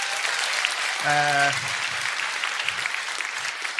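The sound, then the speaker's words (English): An audience applauds steadily for a man who has just asked a question, a dense wash of many hands clapping at an even loudness, with a brief voiced shout or cheer rising out of it early on. “Round of applause for this man.”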